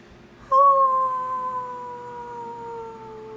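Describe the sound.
A person lets out a single long wolf-like howl, loud, holding a steady tone that slowly slides downward in pitch for about three seconds, with no talking around it.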